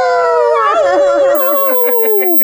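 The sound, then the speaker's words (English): A person mimics a dog's howl: one long, loud, wavering note, trembling throughout and sliding downward before it cuts off, with no other sounds. “Now, is there a dog now that's going”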